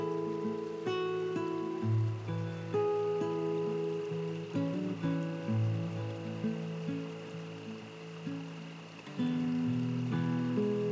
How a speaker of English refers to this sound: Listen to the soft chatter of the running water as it flows downstream. And see the clear blue waters glisten.